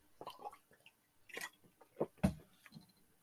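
Quiet mouth sounds of someone sipping a drink: a few soft slurps and wet smacks, ending in a gulp-like swallow, with no talking.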